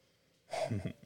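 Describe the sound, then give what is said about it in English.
A short, breathy sniff of a drink, a quick nasal inhale that swells and fades within about half a second, followed by a faint trailing breath. No talking. “So I'm going to take a little sniff. Nose in there.”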